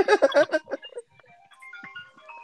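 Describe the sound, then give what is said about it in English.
A mobile phone ringtone plays a thin, melodic electronic tune of steady beeping tones, fairly quiet and continuing for over a second after a short, loud burst of sound at the start. “No, that was my other phone.”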